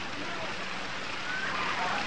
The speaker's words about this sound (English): Yes, it's raining.